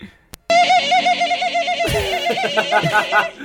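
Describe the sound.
A voice imitates a chimpanzee, starting with a loud, high, warbling hoot and breaking into rapid, choppy excited cries for about three seconds.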